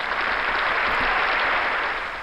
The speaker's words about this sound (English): But I want to give a round of applause.